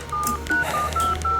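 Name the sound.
telephone keypad dialing tones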